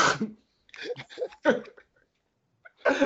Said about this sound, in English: he's coughed 3 times in a row, and I think he tried to hold back a sneeze. I seen it in his eyes.